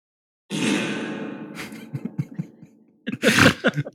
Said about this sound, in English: Oh, here it is. Oh, wow. That's a good one. Yeah. The title for this one is fart with extra reverb, not just reverb, extra reverb. That's extra reverb.